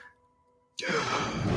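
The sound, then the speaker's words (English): In a James Bond film trailer, after a hushed stretch with a faint low hum, the character Safin suddenly lets out a loud, breathy gasp, the rasping breath sustained through the end. “Obviously, you have Safin gasping.”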